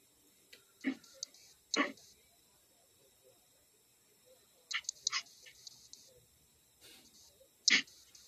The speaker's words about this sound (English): I hear those puppies. They're just so damn cute.